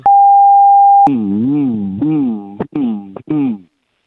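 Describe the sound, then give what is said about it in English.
After a brief steady electronic beep, a person hums a low, wavering drone in four uneven bursts, each stopping abruptly, imitating a repetitive pulsing humming noise that goes in and out like Morse code, fairly loud. “It's like a repetitive humming noise. Yeah, because they say it's like a Morse code, in and out, kind of not a consistent sound.”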